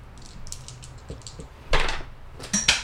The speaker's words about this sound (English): Ooh, dice on the floor. Yeah, you should re-roll it.